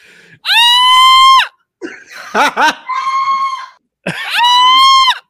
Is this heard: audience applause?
no